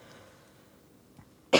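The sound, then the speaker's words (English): A single loud cough from a person during an interview bursts out abruptly at the very end, after a stretch of near silence with only a faint soft sound just before it. “Me coughing is the problem.”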